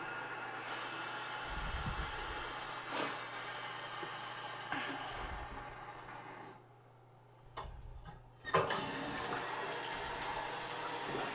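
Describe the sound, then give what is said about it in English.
A clogged toilet being plunged, with several irregular low, wet thumps and sloshing bursts over steady background noise, moderately loud, with no one speaking. “You guys are hearing a man plunge.”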